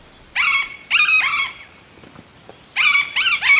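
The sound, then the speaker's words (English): Calls of the yellow-eared parrot, a bird of Colombia: loud, nasal, harmonic squawks arriving in two bunches of several quick calls each, separated by a short quiet pause, with no one talking. “Out of the hundreds of species in the field guide, meet one of Colombia's birds, the yellow-eared parrot.”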